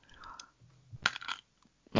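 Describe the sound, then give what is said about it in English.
A crisp bite into a crunchy candy bar, followed by a few wet crunching chews and a final loud crackle, with short quiet pauses between. “Why don't we just go ahead and let's get in close so we can hear the crunch on this thing.”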